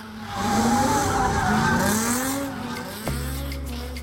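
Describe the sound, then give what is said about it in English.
Car tires screech loudly, burning rubber at a street takeover in Southern California, with wavering, rising and falling squeals over a roaring engine, then the sound shifts abruptly to a steady low rumble near the end. “Street takeovers, street races.”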